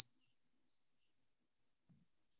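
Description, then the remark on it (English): A brown-headed cowbird gives a short, very high, thin whistled call that slides up and down with a liquid, ringing quality, lasting about half a second, followed by near silence. “Very high pitch and a little kind of like a bell ringing.”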